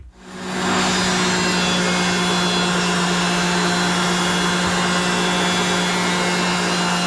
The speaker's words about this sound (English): Would that be like a planer?